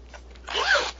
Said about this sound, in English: I'm just going to show you the zipper again. It's really nice.